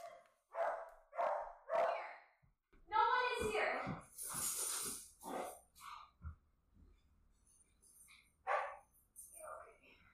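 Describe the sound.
A pet dog barks three times in quick succession, loud, followed by a stretch of voices talking while its owner tries to calm it down, with a few more scattered yaps and noises in the background.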